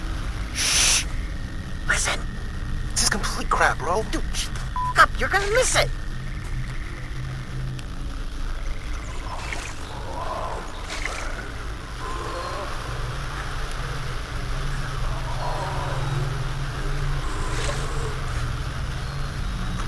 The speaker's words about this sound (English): How freaky is that? Come on, that's just a frog. Is it? Or is it the Creekman?